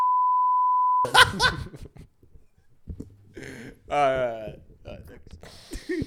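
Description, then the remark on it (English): A steady, loud censor bleep tone holds for about a second over a swear word, then cuts off abruptly into people talking and laughing. “Should you have do to bleep that, beep that.”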